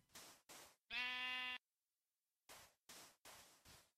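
A sheep in a video game lets out one loud, buzzy bleat, framed by short bursts of noisy crunching before and after, with a moment of silence in between. No one speaks.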